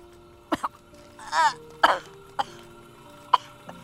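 A bout of irregular coughing after a sip of water: a few short, sharp coughs interspersed with two longer, raspy, sputtering ones, moderately loud, with brief pauses between.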